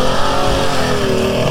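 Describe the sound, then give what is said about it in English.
A pre-war vintage car engine revs loudly and steadily at Brooklands during a driving test, as cars come in from the track; its throaty, harmonic drone holds at a high pitch for the whole moment, with no voices over it. “Okay, it looks like we're heading into the lunchtime session, so some of the cars are now coming in, having been campaigned around the track this morning.”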